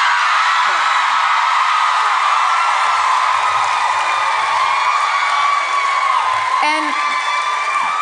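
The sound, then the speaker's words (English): A large audience at a live show in Phoenix cheers and whoops nonstop after Jodi Arias is mentioned, a loud, dense wall of shouting voices that holds steady throughout, with a few higher yells cutting through near the end. “Again, for people, if this is your first time or you bought tickets on a whim, on a dare, we're not cheering for Jodi Arias.”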